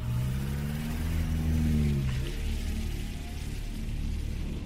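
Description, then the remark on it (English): A car engine revs and accelerates as the car is driven, a low rising drone with a steady road rumble underneath, no voices, continuing for several seconds. “So Han, he drove me. He's one of the leaders. He drove me out.”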